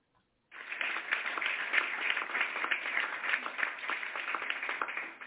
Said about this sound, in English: I just had to give him praise right there. Clap my hands to him because he's looking for faithful servants.